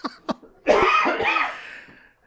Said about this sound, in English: I cough and my body hurts.